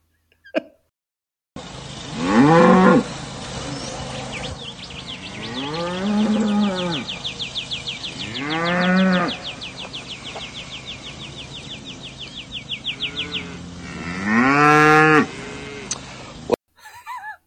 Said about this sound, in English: Just moos.